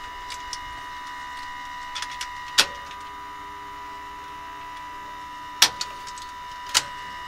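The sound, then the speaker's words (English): An aircraft fuel booster pump, just switched on in the flight deck, runs with a steady electric whine and hum, broken by three sharp clicks spaced a few seconds apart. “So what we'll do now, turn this pump down here, which is the booster pump.”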